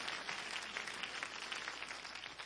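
An audience claps their hands in a steady, dense wash of applause, many overlapping claps blending into a continuous crackle at even loudness, with no voices standing out.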